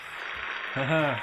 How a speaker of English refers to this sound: Yep. Right, thanks for the applause. Great. Okay, guys. Okay. Enough. Yeah. It's enough. That's enough!